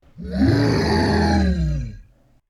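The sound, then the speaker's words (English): A deep, guttural roar from a pack of tree beasts rises quickly and holds for almost two seconds, rough and growling with heavy low tones, then breaks off abruptly. No one speaks. “And every branch reached out for Kai and the ninjas as the roar of a pack of tree beasts echoed all around them.”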